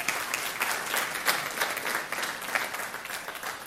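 An audience applauds steadily, a dense wash of many hands clapping at once, fairly loud and sustained throughout with no talking over it.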